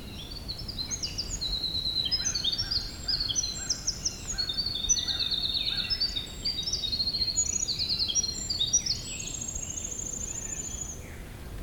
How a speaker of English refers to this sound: Gray catbirds.